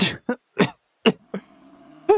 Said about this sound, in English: Her eyes get really wide and she just starts coughing.